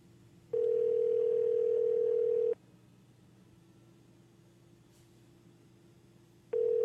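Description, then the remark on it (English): An outgoing phone call's ringing tone: a steady two-second electronic ring, about four seconds of quiet line hiss, then the next ring just starting. Clear and fairly loud, with no voices. “All right, let me call him and see.”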